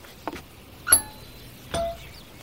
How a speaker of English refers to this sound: Before we try opening the door, let's ring the bell first.